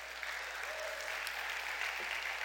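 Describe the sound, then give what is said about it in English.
An audience applauding together at the First Baptist Church, a steady, dense wash of clapping hands, even from start to finish, with a few faint voices mixed in. “Y'all need to say amen, clap, do something.”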